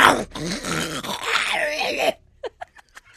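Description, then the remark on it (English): A person loudly imitates a rough, growling snore for about two seconds, followed by a few short, quiet clicks and breaths in near silence. “As I slept, I thought you were going to do a snore.”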